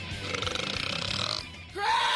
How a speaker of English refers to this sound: If I can't provide content, I will provide belching.